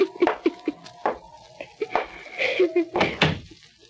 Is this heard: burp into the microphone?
no